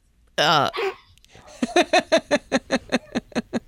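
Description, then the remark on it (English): A dog lets out one drawn-out bark, then after a short pause a quick, steady string of about a dozen short barks, loud. “The joys of dogs barking.”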